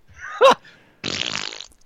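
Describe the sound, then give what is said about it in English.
A person blows a loud, buzzy raspberry with their mouth, imitating a fart. It lasts under a second after a brief vocal yelp, and another starts right at the end. “No, we can make fart noises.”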